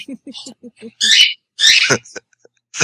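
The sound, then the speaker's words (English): A female pet bird calls after flying: a quick, even run of short chirps, then two loud, raspy squawks with brief pauses between, and one last short call at the end. “She sounds proud of herself.”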